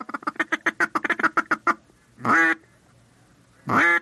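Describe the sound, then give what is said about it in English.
A duck call's feed chuckle, imitating the low cackling of ducks feeding at rest on the water: a quick, steady run of about a dozen low, clipped cackling notes, then two longer, separate quacks, all clear with no talking. “As they get even closer, you will cut back on the frequency and the volume of your calling, and you will go into a feed chuckle, which is a low-pitched cackling sound that ducks make when they're feeding on the water and at rest.”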